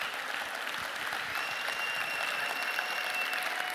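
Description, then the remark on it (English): A crowd applauds steadily for nearly four seconds, a dense, even wash of clapping with some faint whistles or cheers riding over it, no speech, celebrating their pastor's 55th birthday. “Say happy birthday. He may not have many left. Let's hear it for him, people.”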